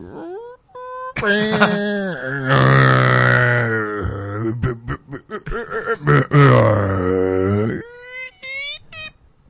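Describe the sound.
A person vocally imitates a long, drawn-out fart of at least ten seconds that sounded like an engine revving up: a sustained buzzing, revving drone with wavering pitch and sputtering breaks. It is loud and lasts several seconds.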